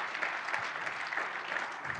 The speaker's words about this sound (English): Can we give him a clap?